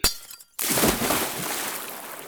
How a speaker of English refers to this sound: You go straight through it, but the vial breaks on him as if he's solid.